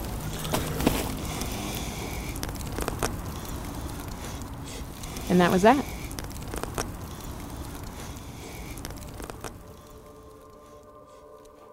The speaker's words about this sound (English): And dropped the crushed pieces into a giant bonfire.